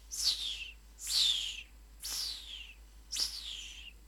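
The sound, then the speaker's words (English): Four bright, descending calls from birds up in the sky repeat at a steady pace, each a sharp whistled sweep from high to lower pitch, with no voices present. “The sound was something like birds up in the sky.”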